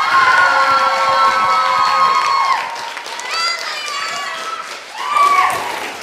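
An audience cheers loudly, with high whoops and shouts over a dense wash of crowd noise that dips after a couple of seconds and swells again briefly near the end.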